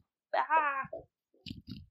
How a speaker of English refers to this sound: I have to shoo the cat.